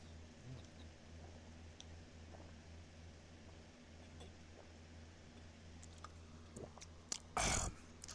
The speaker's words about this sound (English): So, hold on. Let me take a sip of my water real quick.